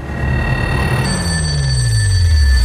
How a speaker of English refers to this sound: I want you to answer the phone for them. It rarely rings. But one night, it does.